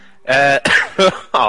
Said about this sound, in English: why do I have to keep coughing?